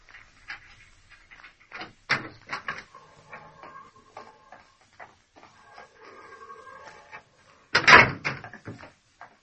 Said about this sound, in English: Open the corridor door